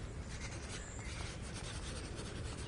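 A pencil writing a note scratches steadily across paper, a continuous rasping that runs without a break for a few seconds. No one speaks.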